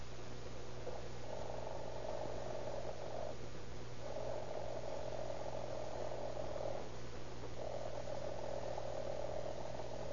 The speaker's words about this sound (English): I just want you to listen while I ring this alarm clock. Just wait till I get it set. Yeah. Now, there she is, now.